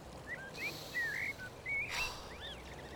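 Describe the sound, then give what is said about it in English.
Birds sing outdoors, far out from town, in a string of short, bright whistles and rising chirps, fairly quiet, over a steady low rumble and brief bursts of breezy hiss. “We're so far out, you can hardly hear the traffic. Just the birds.”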